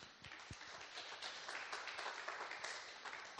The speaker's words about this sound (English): Let's applause our pastor as he takes his seat.